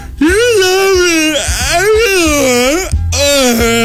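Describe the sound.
A voice imitates whale calls, like Dory trying to speak whale in Finding Nemo, with long, drawn-out wailing moans that swoop up and down in pitch, loud and continuous over about four seconds with brief breaks between phrases.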